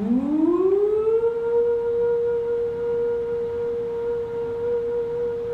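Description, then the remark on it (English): A loud nuclear warning siren winds up over about a second and a half, then holds a steady high wail without falling back down, sounding alone. “They're loud, like the fire sirens that sound through town, but they go up and they don't come down.”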